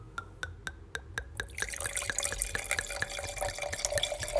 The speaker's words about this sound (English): This is not a sound effect, by the way. This is actually pulling a glass of wine.